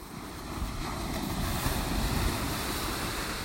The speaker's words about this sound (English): Now, time for some sounds from nature. Soak them up, because we're back at the coast with crashing waves in Devon.